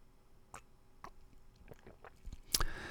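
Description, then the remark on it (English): A few soft, wet mouth sounds, small slurps and clicks spaced out, ending in a brief louder sip or gulp as a person sips coffee from a cup; nobody speaks. “Let me just take a quick sip here.”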